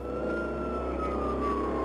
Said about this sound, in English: Once I heard the sirens coming, I ran down to the street.